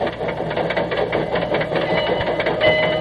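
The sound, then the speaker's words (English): The General, a steam locomotive built in 1855, runs with a steady, rhythmic clatter of tappets over a continuous hiss, and a thin, high whine from its steam escape valve briefly rises near the end, from a record issued by the Louisville and Nashville Railroad. No one speaks. “Hear them tappets? Little steam escape valve there.”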